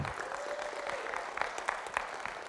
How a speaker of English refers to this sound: Yeah, come on, you can clap.